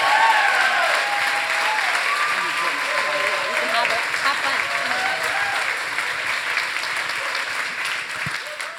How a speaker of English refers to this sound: So why don't you just give her one more applause, and I want you to just embrace her.